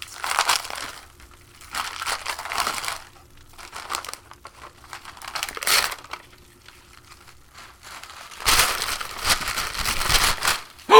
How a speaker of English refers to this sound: Hey, here it is, under the tree, like she said. It's huge! Wow, and that is some fancy-ass wrapping paper. Oh, it's almost too pretty to open. Almost.